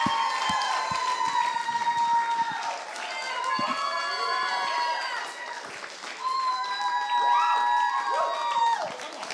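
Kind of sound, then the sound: crowd, crowd cheering and clapping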